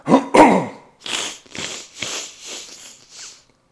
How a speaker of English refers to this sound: That's always good for the podcast. Lots of sniffing, snorting, coughing, and hacking. Always good for that ASMR episode.